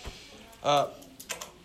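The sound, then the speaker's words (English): A few small, sharp plastic clicks like ballpoint pens being clicked, coming in a quick irregular cluster near the end, after a brief burst of a voice. “I hear some of you have the pens, so you can stop clicking those.”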